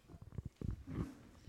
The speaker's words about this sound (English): Even animals can create it, and tigers are particularly well known as a source. The frequency of a tiger's roar is around 18 hertz, right in that range we mentioned earlier.